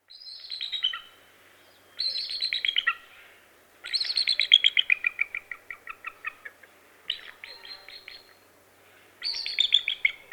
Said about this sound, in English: So let's listen to the actual call that bald eagles make.